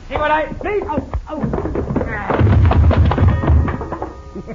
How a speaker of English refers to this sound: Madam, Cisco, you hit that coyote so hard, he bang up against the wall and knocked the clock down.